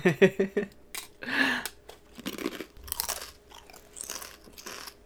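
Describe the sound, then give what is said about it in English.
A crunchy, spicy potato chip is bitten right up against the mic, followed by several seconds of loud, close, crackling chewing crunches in an irregular rhythm, with no talking. “That is some fucking very, very solid chip crunch sound effect.”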